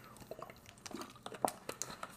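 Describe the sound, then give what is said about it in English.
Quiet drinking of strawberry blood orange sparkling water by Smart Water: soft wet sips and swallows with scattered small clicks and pops, irregular and brief, with no talking. “I'm drinking this sparkling water.”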